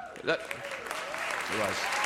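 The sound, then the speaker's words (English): An audience that includes Tarantino, who is not clapping, applauds steadily: a dense wash of clapping that holds at an even level throughout, with a couple of brief voices rising over it. “Tarantino's not even clapping.”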